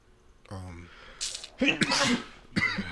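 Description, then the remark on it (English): A single loud sneeze: a voiced gasping build-up, then a sharp, breathy burst that sprays hissing noise. A short burst of voice follows right after. “bless you.”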